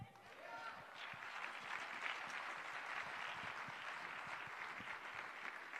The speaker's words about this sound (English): I'm going to wait until you clap.